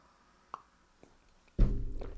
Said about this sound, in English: Hit the table, took a sip of tea for those of you just listening and not watching.